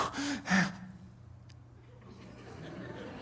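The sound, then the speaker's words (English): A person imitates the heavy, breathless panting of people who have just finished running, with two sharp, loud breathy bursts at the start, then trails off into quiet, low murmuring breath. “And they're sitting there panting, going, oh, man, oh, wow, that was”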